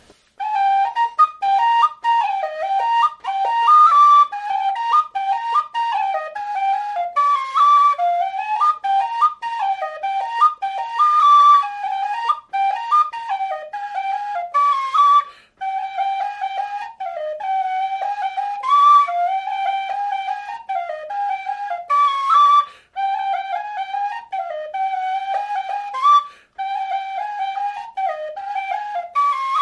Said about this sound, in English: So I just did a quick reminder of this tune on whistle. So here it is, Baltioura from Smollett-Holden with that note correct.